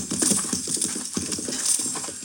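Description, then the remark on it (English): Horses' hooves clip-clop steadily in a quick, overlapping rhythm as several armed men ride horses in the American West, with no voices over the sound. “Those men on the horses.”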